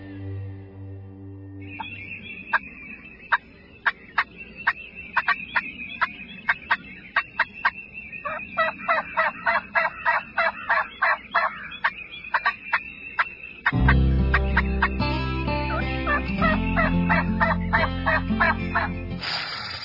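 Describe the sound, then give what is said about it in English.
A wild turkey gobbles in a long run of rapid, rattling bursts against a steady high whine, then a low, dense musical bed takes over near the end. “big time turkeys running to your call”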